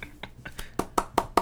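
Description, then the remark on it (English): A quick run of hand claps, about seven in all: a few softer ones at first, then four louder, sharper claps in a steady, even rhythm. No one speaks. “One singular clap.”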